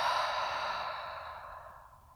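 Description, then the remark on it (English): A long, airy breath through an open mouth during a breathing exercise, fairly soft, a steady hiss that slowly fades over about two seconds, with no talking. “If you were to do this breath with your mouth open, it would be a creating like a hee-haw sound, a hee with every breath in, and a ha with every breath out.”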